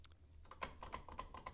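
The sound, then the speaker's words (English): During a quiz game, a contestant clicks an answer button over and over in a quick, slightly uneven rhythm, each click sharp and light. The clicks are faint against a low background hum, with no voices. “He's still clicking the button. He didn't stop.”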